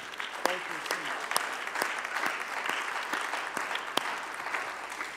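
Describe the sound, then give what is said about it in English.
An audience claps steadily for the youth, a dense wash of many hands with a few sharper individual claps standing out, holding at an even moderate level throughout. “Let's give them a clap.”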